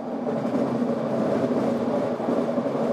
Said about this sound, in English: Loud rattling as train cars trek along the almost 40-year-old system. At Edmund SkyTrain Station in Burnaby, all that noise is grinding the gears of people who live nearby. It's the metal-on-metal sound that's bad.